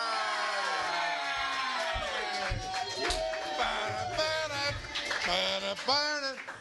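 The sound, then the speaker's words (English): A sold-out capacity live audience at a Farley Brothers Radio Hour show cheers loudly, with overlapping whoops, shouts and high-pitched yells rising and falling in a dense, continuous roar. “A sold out capacity crowd.”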